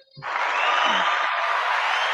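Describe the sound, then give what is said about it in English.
Hand clapping that starts abruptly and continues as a dense, steady roar of applause for about two seconds, loud and even throughout, with no voices. “Goddamn, I'm going to clap for myself.”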